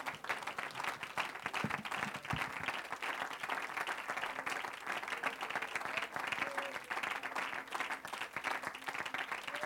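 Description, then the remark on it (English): An audience at a morning church service applauds an evangelist steadily, dense clapping for the full stretch, with faint voices and a few murmured calls rising under the applause. “Good evangelist, a hand clap, amen, in this house this morning.”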